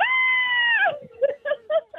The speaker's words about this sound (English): Give us a scream.